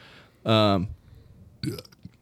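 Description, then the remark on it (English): A loud wet burp lasting about half a second, with a gurgly, voiced rasp, followed by a brief grunt-like vocal sound a moment later. “It was a little wet in there. I started out with the truth. Can you burp?”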